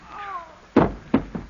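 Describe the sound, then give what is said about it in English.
Three heavy, dull thuds of punches land in quick succession, knocking a man out, the first loudest and the rest fading, after a faint, whiny tonal sound at the start. “you have knocked him out.”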